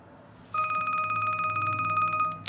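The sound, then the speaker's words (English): A telephone bell rings in a rapid, continuous trill for about two seconds, loud, with a bright metallic buzz, then cuts off with a small clack. “Here's my phone. I don't want to be disturbed, okay? I don't care who calls.”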